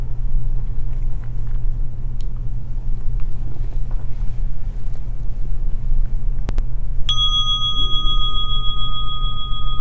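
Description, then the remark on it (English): A meditation bell is struck once to begin a 20-minute sitting meditation and rings out with a clear, lingering tone that slowly fades, over a steady low rumbling hum in the background. “So I'm going to ring the bell, and we'll sit for 20 minutes.”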